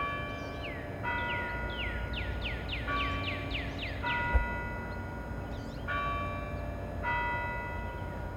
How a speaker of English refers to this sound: On either side are Washington Hall and the Basilica of the Sacred Heart, whose bells keep the rhythm of campus.